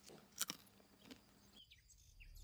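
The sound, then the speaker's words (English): Crisp crunching as someone bites and chews pistachio nuts, with two or three sharp cracks, followed by faint bird chirps in the background. “Would you like a pistachio? They're my favourite.”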